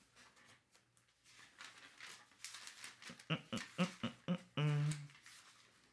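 Close papery rustling and swishing, like pages being flipped in quick succession, with a few crisp taps and a short low hum near the end; no one speaks.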